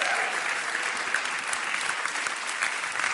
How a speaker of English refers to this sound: Can we have a big round of applause for Lois and for Alex, please?